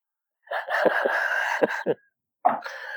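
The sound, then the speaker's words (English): A voice imitates a creature, stabbed in the throat with a sword, coughing its last cough of smoke: a long gravelly rasp broken by several sharp hacks, then a brief pause and one more short cough, fairly loud. “And that pretty much, he coughs his last cough of smoke.”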